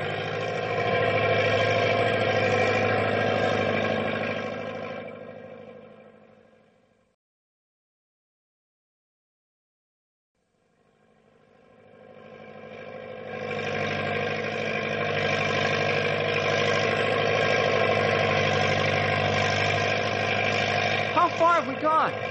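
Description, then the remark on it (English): The engine of a truck called Big Brute labours steadily in low gear over rough going through snow drifts, a loud droning rumble that fades away into a few seconds of silence, then swells back up and keeps running. “I still have two lower gears to shift into.”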